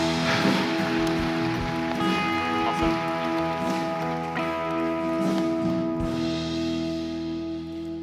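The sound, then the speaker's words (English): An audience at SIBKL applauds steadily for about eight seconds to welcome Pastor Mark Stevens, a dense, crackling wash of clapping that holds an even loudness, with a sustained musical chord humming underneath. “I want you to put your hands together and welcome Pastor Mark Stevens. Give him a warm SIBKL applause.”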